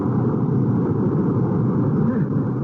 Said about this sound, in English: Ship your oars, lad. We'll let the next wave drive the boat onto the beach.